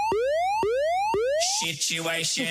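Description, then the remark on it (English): A loud electronic alarm effect: three rising, whooping tones repeat in quick succession, each sweep climbing sharply, followed by a burst of harsh, buzzy chirping noise. “So we never had to use the alarm.”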